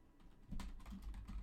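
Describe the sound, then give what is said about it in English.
Rapid clicking and clacking of fingers typing on a computer keyboard, a quick irregular run of keystrokes picking up after a brief pause, fairly quiet, with no voices. “Sorry, guys, this is my clicking and clacking again.”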